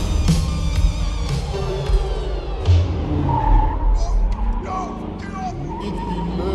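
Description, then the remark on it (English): A car skids loudly, its tires letting out a long, sliding squeal over a rumbling engine. The screech fades after a few seconds into rough road and motor noise. “That's the car right there.”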